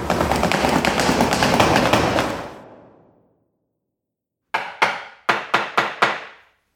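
A loud, rushing burst of noise fades away into silence, then a hammer strikes five quick, sharp blows in a short, slightly uneven series as a sign is hammered up onto a wall, distinct with no talking.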